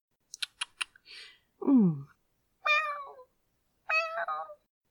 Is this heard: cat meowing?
yes